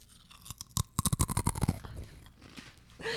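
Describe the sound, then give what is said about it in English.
Loud, crisp crunching of pop chips taken from a bag and chewed at 7 a.m. A rapid series of sharp crackly bites comes in an irregular rhythm, fading into softer chewing before a brief rustle at the end. “nothing says 7 a.m. like eating some pop chips”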